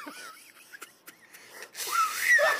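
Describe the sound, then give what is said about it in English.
Airy, breathy blowing with a few thin, wavering squeaks that never settle into a clear tone, ending in a louder rush of hissing breath, as someone fails at an attempted "Mexican whistle". “Give me the Mexican whistle, bro.”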